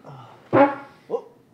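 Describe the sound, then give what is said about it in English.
A loud, brassy fart bursts out, followed half a second later by a shorter, softer toot, with no talking around it. “Shane, Jesus. Excuse me. Barking spider vector.”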